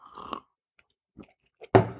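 A short slurping sip of coffee, a few faint mouth and swallow clicks, then a sharper clunk like a mug set down, with no talking.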